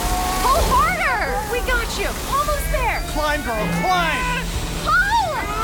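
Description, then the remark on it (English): A pressure washer sprays hot water in a constant rushing hiss while several voices shout and shriek loudly over it the whole time. “Hot pressure washing commencing.”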